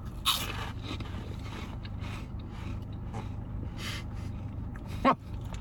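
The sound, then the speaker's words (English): Crunching into cinnamon twist snacks: a sharp bite at the start, softer munching crackles through the middle, and another loud crisp crunch near the end, over a low steady hum with no talking. “It's going to be a big crunch, I'll say that.”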